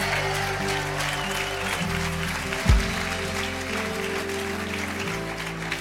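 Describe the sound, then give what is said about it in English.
A crowd claps steadily for several seconds, a dense, unbroken wash of applause over sustained, shifting keyboard chords, with one brief low thump midway. “come on, give them 10 seconds. Hey, clap, you believe it today.”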